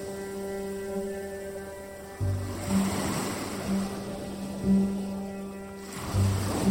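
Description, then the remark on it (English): Ocean surf rolls in and breaks in several rushing surges after a quiet start, the wash rising and falling over a steady low electrical hum that runs throughout. “And then there are other waves that are just incredibly powerful.”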